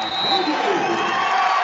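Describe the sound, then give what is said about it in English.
A loud, steady roar from the crowd at a Dakota Wesleyan versus Hastings basketball game, cheering and yelling in a dense wash of voices that holds at the same level throughout, with no single speaker standing out. “Crowd is finally getting into the ball game here.”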